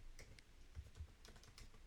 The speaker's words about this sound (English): Oh, here he goes. I'm typing away.